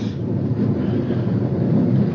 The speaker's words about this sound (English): Oh, the rain. It started. It's coming down like crazy.